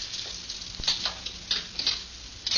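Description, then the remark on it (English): Keys jingle and clink in several short, bright bursts as someone tries keys to unlock a car's rear compartment, fairly quiet, with small metallic clicks between them and no voices. “One of these keys unlocks this.”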